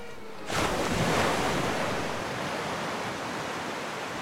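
Ocean surf swells in after a brief quiet start, a broad steady wash of breaking waves that stays loud, hissing and rumbling continuously with no voices.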